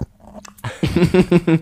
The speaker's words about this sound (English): Sorry, I was just chugging my water. Go ahead, say it again, because they definitely cannot hear that over me chugging my hydro flasks.